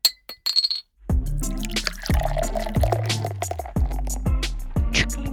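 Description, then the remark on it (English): Several quick, bright glass clinks ring out, like glasses tapped together in a toast, followed by a steadier stretch of resonant, liquid-like tones with no talking. “Clink, clink, clink. He does it. It does it on the thing.”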